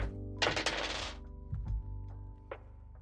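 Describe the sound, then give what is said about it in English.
Dice are rolled on a table, rattling and tumbling in a quick clattering burst, followed by a couple of dull knocks and one last sharp click as they settle. No one speaks. “So I'm going to roll some dice.”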